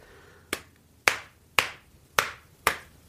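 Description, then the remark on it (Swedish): Five sharp, loud slaps from a paddle turned leather side down land on buttocks one after another at a steady, unhurried pace, each a crisp smack that quickly fades, with no talking between them. “Och sen om du vänder på den, så att du får den lädersidan neråt. Helt annat ljud.”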